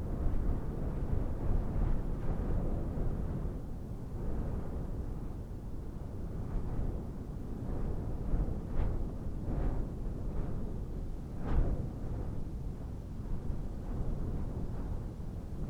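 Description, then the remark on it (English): Wind roars in a steady, low rumble that never lets up, with brief gusty surges rising and falling over it. No voices, just the continuous whooshing rush. “And you listen to the wind as it whips around you.”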